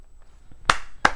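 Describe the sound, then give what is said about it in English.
Two sharp hand claps from a single person applauding themself, spaced about a third of a second apart, crisp and fairly loud against a quiet background with no voices. “I just had to applaud myself.”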